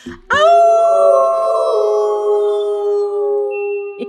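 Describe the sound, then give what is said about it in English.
A person lets out one long, loud wolf-like howl, holding a steady high note for about three seconds before it trails off. “Oh my gosh, you guys, I will be howling on that full moon.”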